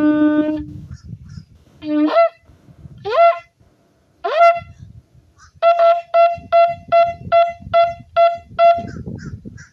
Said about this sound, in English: When you hear crows around, especially with the road called Jim Crow Road.